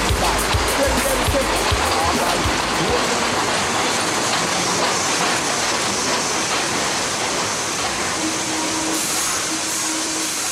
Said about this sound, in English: This is the last stop on this train. Everyone, please leave the train. Thank you for riding with MTA New York City Transit.